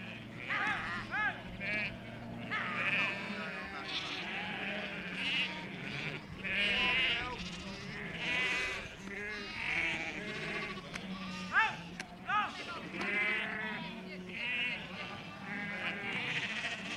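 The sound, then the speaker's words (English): A flock of sheep bleating repeatedly outdoors on the moors of Dartmoor National Park, Devon, southwest England, overlapping calls in an irregular chorus over a low steady rumble, as local shepherds and border collies bring them in for shearing. “Local shepherds call up their border collies to bring in the sheep from the moors for shearing.”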